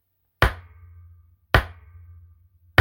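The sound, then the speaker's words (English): A gavel bangs three times at an even, slow pace to open a session of opening arguments. It is the first gavel banging in about six months. Each sharp wooden crack rings briefly with a low thud beneath it. The strikes are loud and stand alone, with no talking. “is going to bang the gavel for the first time in about 6 months.”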